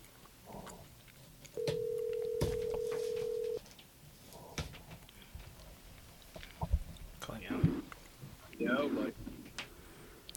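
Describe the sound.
An outgoing phone call rings once: a steady, moderately loud ringback tone lasting about two seconds, followed by quiet line noise and faint voices talking.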